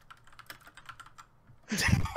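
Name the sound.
typing on a keyboard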